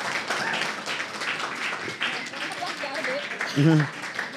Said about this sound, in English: Can we have a round of applause for our panelists?